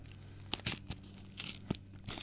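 Gift wrapping paper being torn open in quick, crackly bursts, with short rips and crinkles scattered over about two seconds and no talking.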